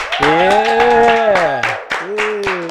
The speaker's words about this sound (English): Hold on. Let's clap for that, guys.